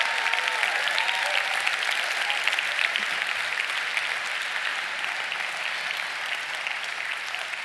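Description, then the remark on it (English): Steady, dense applause from an audience, many hands clapping at once in a continuous rush that holds a fairly even level for several seconds with no voices on top. “And it gets better, hold the clap.”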